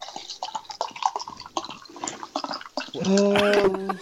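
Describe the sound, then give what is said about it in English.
A drink is poured into a glass: irregular splashing and glugging at first, then a steady gurgling stream whose pitch rises as the glass fills. “No, I'm just pouring a drink.”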